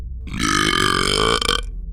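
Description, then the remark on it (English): A single loud, drawn-out belch lasting over a second, deep and rumbling with a buzzy, harmonic tone, alone with no talking, let out by a man after slurping the last of a chocolate malt. “He just slurped the last of his chocolate malt and let out a loud, obnoxious belch.”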